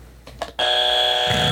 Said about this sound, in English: You didn't ring your buzzer.